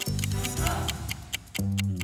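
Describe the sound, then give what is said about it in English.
A steady mechanical ticking, roughly four crisp ticks per second, runs over a low humming drone that briefly drops out and returns near the end. “Doctor, do you hear that ticking noise? I think it's coming from the Cyberman.”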